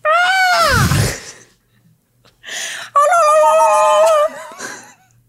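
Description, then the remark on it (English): Someone vocally imitates a deer call: a loud, harmonic cry that bends downward, then after a short pause a long, wavering, high-pitched bleat with a brief trailing squeal. “What noise do deer make?”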